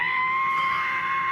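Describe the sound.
A voice imitates a plane's screeching whistle, holding one steady, shrill, piercing tone for just over a second, loud, with nothing else around it.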